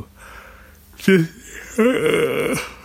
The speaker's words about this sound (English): I'm so sorry for the yawning. I really apologize for it. I'm not even covering my mouth half the time.